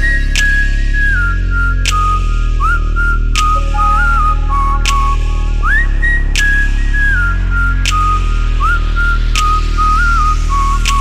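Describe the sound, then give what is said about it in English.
A person whistles a clear, wandering melody with sliding notes, loud, riding over a steady thumping beat with sharp rhythmic clicks throughout. “She got me thinking about her daily while I whistle down the street, like.”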